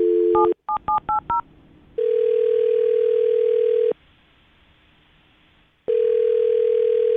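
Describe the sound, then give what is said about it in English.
A rapid burst of phone keypad tones as a man's phone number is dialed, followed by two long, steady ringback tones separated by a pause of silence, clear with no talking. “I'm going to dial his phone number right now and see if he picks up, okay?”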